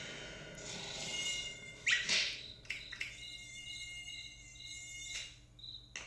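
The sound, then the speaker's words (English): In an animated cartoon, a thin, high-pitched mosquito whine hums steadily for several seconds as the mosquito drinks a larva's blood, with a few sharper buzzing bursts rising over it. No voices are heard. “A mosquito is. Drinking his blood.”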